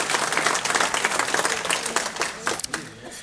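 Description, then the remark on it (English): A crowd applauds steadily, many hands clapping in a dense, loud wash of sound that holds for a few seconds before starting to thin out. “Please join me in a big round of applause for their generosity and their continued support.”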